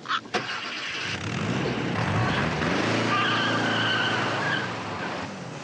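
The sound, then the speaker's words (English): In a scene from the film Harold and Maude, a car engine revs hard and pulls away with a long, loud screech of skidding tires, the squeal rising and sustained for several seconds before easing off. “She took my car!”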